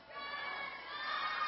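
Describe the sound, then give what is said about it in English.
A large crowd in a church screams a phrase back together in a loud, sustained roar of many voices, swelling slightly toward the end, with no single speaker standing out. “Now, I may say that a couple times, and I want to hear you scream it out at me, all right?”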